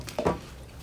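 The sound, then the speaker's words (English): A single brief splash of liquid being poured, quick, followed by quiet low background hum. No voices. “I mean, poured it.”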